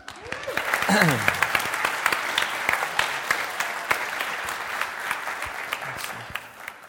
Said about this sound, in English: So give him a little round of applause.